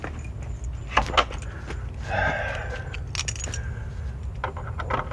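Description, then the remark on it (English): Metal keys jangle and scrape in a door lock, with a few sharp clicks and a short grinding rattle as a key is worked free of the door, over a steady low rumble. “And if I can get the key to come out the door, we're going to take this walk.”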